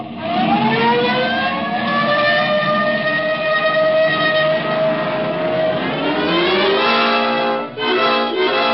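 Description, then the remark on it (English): A police car siren wails loudly and continuously, its pitch sweeping slowly upward and holding, over a steady rumble of engine and road noise, with no one speaking. “This time you can use the siren.”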